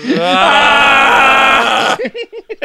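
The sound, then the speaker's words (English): A person imitates Godzilla's scream with a loud, rasping, sustained roar lasting about two seconds, followed by four or five short, choppy vocal bursts that trail off. “Can you imagine how much better the morning would be if just at daybreak, just Godzilla's face just coming over the horizon, just screaming.”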